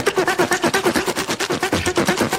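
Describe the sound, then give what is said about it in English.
A rapid, steady sawing sound effect: loud, raspy back-and-forth strokes repeating several times a second, with a faint low hum running underneath and no voices. “Oh, it's the thing I play at the top of the show. saving or sawing the cowl noise.”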